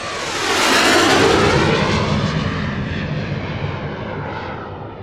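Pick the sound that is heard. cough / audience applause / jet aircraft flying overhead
jet aircraft flying overhead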